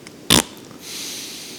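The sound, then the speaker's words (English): A voice imitates a single short, sharp sniff, a bright airy burst lasting about a tenth of a second, followed by a soft steady hiss of breath, mimicking someone trying to catch a whiff of a fart. “I'll hear that. Come at her, like she's trying to get a whiff of it first.”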